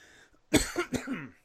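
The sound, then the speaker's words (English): Two harsh, dry coughs from a dry throat in quick succession, the second trailing into a raspy throat-clearing rumble. Loud and abrupt, with no talking. “My throat got dry.”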